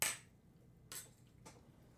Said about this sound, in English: Your plastic cup doesn't clang very well.